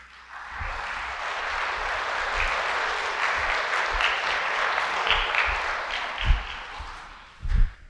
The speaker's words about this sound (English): Clap for them.